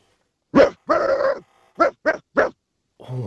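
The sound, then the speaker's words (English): A contestant from Mildura in a competition imitates a dog barking: a sharp bark, a longer drawn-out woof, then three quick barks in a row, followed by a brief murmur of voice at the end. “So we're going to answer them, hear their dog straight away.”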